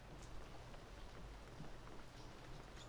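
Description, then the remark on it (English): Soft, steady patter of light rain starting to fall, a faint continuous hiss with scattered tiny droplet ticks and a low rumble underneath, heard outdoors with no one speaking. “Anyway, I'd better get moving. It's starting to rain.”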